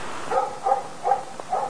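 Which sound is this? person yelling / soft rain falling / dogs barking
dogs barking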